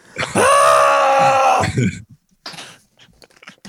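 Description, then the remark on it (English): A person imitates screaming while washing their eyes out, like the Andy Bernard eyewash demonstration from The Office: one loud, drawn-out strained cry lasting over a second, breaking off into breathy rasps and scattered short noises. “I'll just be screaming as I wash my eyes out.”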